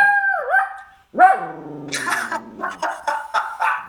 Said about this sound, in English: That's a heck of a bark. That's a puppy bark. Is that the one on the one? That's the little one on my knee. It's the little one on my knee.